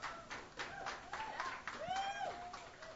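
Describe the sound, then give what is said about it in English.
An audience at a YEG Live show applauds with steady, dense clapping for about three seconds, while a few high, rising whoops and cheers ring out over the clapping. “Big hand for Chris, please.”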